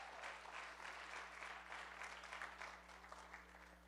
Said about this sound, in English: Wasn't that great with the kids? Give the kids one more hand clap. They did a great job.